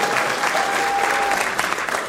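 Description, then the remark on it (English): A studio audience applauds Keith Barry, a dense, even wash of clapping at full loudness that holds for about two seconds, with a faint steady tone briefly audible through it. “Keith Barry, give him a round of applause there.”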